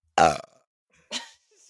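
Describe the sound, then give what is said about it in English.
A loud belch bursts out and rumbles briefly, followed about a second later by a short, breathy exhale or second small burp, with no talking. “That's gonna be such a good sound quality. I know. For the I belch.”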